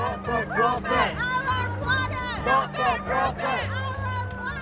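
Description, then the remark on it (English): Loud crowd chatter and shouting outdoors, outside a climate conference, many overlapping voices rising and falling at once, with a low steady droning tone underneath the busy, chaotic babble. “Outside, it's chaotic and loud. There are tears, there's laughter, there's a guy riding a bike in a panda suit.”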